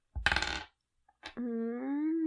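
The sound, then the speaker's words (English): Dice rolled for an attack clatter across a hard tabletop in a quick burst of rattling hits lasting about half a second. After a short pause, someone lets out a long, drawn-out vocal sound. “Go ahead and roll to attack again.”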